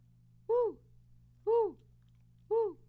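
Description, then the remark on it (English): A voice imitates an owl with three drawn-out "hoo" calls, evenly spaced about a second apart, each rising then falling in pitch, fairly loud over a low steady hum. “It's like a f***ing owl over there.”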